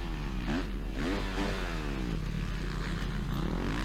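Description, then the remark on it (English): A dirt bike engine revs hard, its pitch sweeping up and down in quick surges as it throttles through a right-hand berm turn, with a steady low rumble and gritty clatter underneath. “There's one berm that he goes into this right-hander, and you can hear the bike.”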